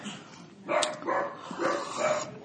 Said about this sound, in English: Hold tight, because my dog's going to freak out because someone's here right now. So we gotta wave the storm with Elwood and Amber because they're crazy.